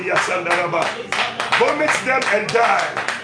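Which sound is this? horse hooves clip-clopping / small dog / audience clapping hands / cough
audience clapping hands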